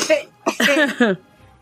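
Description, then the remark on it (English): A person's voice mimics a creature's coughing with a short rough burst, a brief pause, then a longer run of raspy, hacking coughs, fairly loud. “Does like this coughing”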